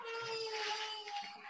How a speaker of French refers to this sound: Oh, attendez. Vous entendez un bébé qui pleure encore?